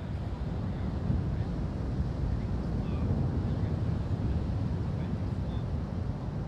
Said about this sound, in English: I'm at the beach. The sound of the ocean is so loud, no one around me can hear me.